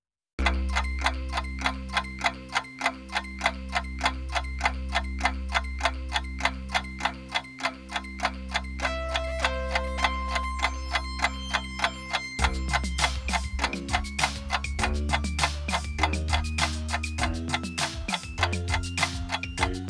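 A countdown clock ticks steadily and quickly, timing listeners answering quiz questions, over a looping musical bed with deep sustained bass, the music growing busier and more urgent in the second half. No one speaks.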